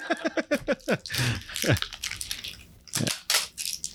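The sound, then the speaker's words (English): Someone chews the plastic top off a bottle of Bird Dog, giving irregular crunching and crackling bursts, with a quick run of squeaky, chirping scrapes at the start and a few sharp crunches after. “He is, for anybody that's just listening and not watching this on YouTube, he is chewing the top off of the bird dog.”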